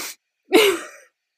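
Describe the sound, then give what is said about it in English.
A voice imitates the sniff of a sniff kiss: a brief breathy hiss, then a longer nasal, airy inhale with a faint voiced edge, loud, with no other talk. “Hang on, I need to hear if there's a sniff sound.”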